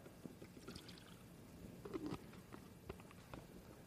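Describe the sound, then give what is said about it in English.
Water is poured onto a potted plant, a soft, steady stream of splashing and pattering into soil that runs for a few seconds, quiet with no voices. “I won't have to tend to this for a day or two. You know why? Because it just got some good water.”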